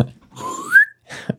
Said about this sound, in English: Insert slide whistle here.